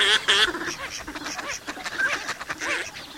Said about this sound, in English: Carved by glacial winds at the end of the last ice age, the playas are shallow depressions the warmth of spring fills with abundant life. As winter ends, 10 million waterfowl rest and feed here before continuing north.